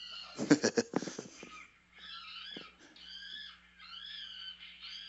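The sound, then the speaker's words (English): A few harsh, ragged bursts give way to high-pitched, wavering squealing screams from a film, sustained in long strained cries of about a second each, fairly loud over a faint low hum. “Like a squealing pig.”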